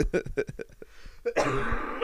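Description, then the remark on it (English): A loud cough bursts out after a run of quick throaty clearing sounds, ending in a harsh, raspy rush of air that lingers for a moment. “Oh, big cough.”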